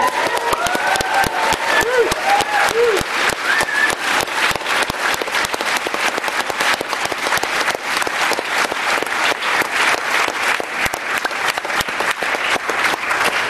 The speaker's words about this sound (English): I'd like to start by, first of all, paying tribute to the true heroes of this struggle, Russian LGBT people and their straight allies. Can you please join me in giving a riotous, loud cheer of applause?